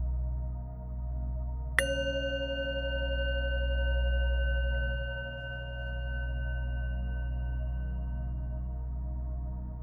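A single bell is struck once and rings out clearly, its bright overtones fading slowly over several seconds above a steady low hum in the background.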